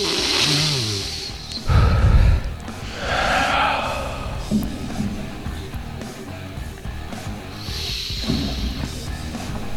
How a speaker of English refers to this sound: So the smell. Let's give it a little sniff test. Okay, let's smell it.